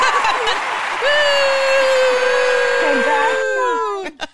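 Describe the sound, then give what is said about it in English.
A canned applause sound effect, played to congratulate two winners: dense crowd clapping with a long, steady, slightly falling cheer-like tone over it, cutting off abruptly after a few seconds, followed by a couple of faint clicks. “We have that little like clapping sound effect.”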